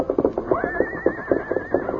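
A paint horse named Scout lets out a long, wavering whinny, loud, while rearing and pawing the ground as it is led to the corral, with steady rhythmic thuds of hooves pounding beneath it.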